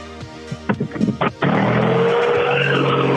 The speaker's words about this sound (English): Okay, so they are actually playing that dial's engine noise here.